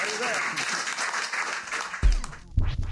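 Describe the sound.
An audience breaks into steady applause, a dense wash of many hands clapping that holds throughout, with a couple of low thumps and some voices coming through near the end.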